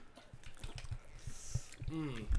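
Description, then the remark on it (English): Someone drinking water during a quick water break, in a series of short, wet gulps and swallows at an irregular rhythm, fairly quiet, ending with a brief voiced breath or sigh. “I got to hydrate up. Quick water break.”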